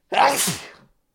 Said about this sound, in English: I've got some other news, but I'm going to sneeze first.